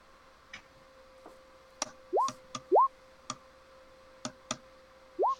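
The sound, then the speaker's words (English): Dice are rolled for a dexterity saving throw in a tabletop role-playing game, clattering with a series of scattered sharp clicks, mixed with a few short rising electronic blips over a faint steady tone, fairly quiet, with no talking. “Come on, dice.”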